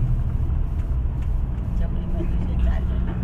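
Steady low engine rumble and road noise fill the cabin of a moving bus, a continuous droning hum with faint rattles, no voices present.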